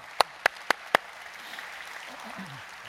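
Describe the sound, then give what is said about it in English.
An audience claps together four times in a quick, even rhythm, each clap sharp and loud, before the sound drops to a low, quiet murmur. “We'll clap for them.”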